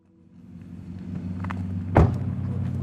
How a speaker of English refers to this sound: is driving away from his apartment in his Dodge Ram.